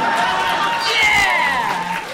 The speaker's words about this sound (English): By the way, when I'm done explaining this, can I get a round of applause if anybody else imagineered this also?